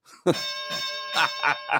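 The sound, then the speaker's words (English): A bell is struck once and rings on with a steady, shimmering metallic tone and bright overtones, while voices talk in short bursts over the fading ring. “I'll give myself the stinking bell.”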